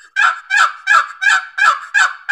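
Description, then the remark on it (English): A series of six raspy turkey hen yelps made on a box call to draw in a tom, evenly spaced in a steady rhythm, loud with no talking. “So it's going to sound like you're going to want to do some yelping.”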